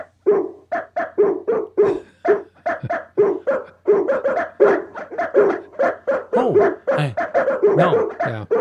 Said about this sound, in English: I'm going to say, well, look at all those dogs outside the window